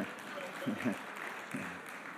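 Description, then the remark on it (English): A crowd claps steadily in a dense, crackling wash of applause, with a few voices calling out briefly over it. The sound stays fairly even and moderately loud throughout. The clapping comes from church members who stood up after attending a block party. “All those people that stood up, they were the ones that were clapping right there.”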